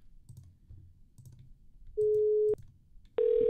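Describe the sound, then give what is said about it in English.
A telephone ringing tone sounds over a phone line: a steady electronic beep lasting about half a second, a short pause, then another tone starting, with faint low clicks and rumble underneath. “Do you hear it ringing now?”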